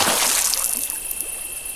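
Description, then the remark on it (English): Steady rushing and splashing of a waterfall, a continuous bright hiss with no pauses, moderately loud, with no voices. “Well, the ship's water pressure sucks. Especially compared to a waterfall.”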